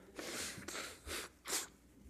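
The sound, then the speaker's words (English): A sneeze from someone who has been fighting an illness for a couple of weeks, with a long breathy, hissing burst, followed by a few shorter sharp exhalations or sniffs. No one speaks. “See, that's where I need to back away. I apologize. That was unpleasant.”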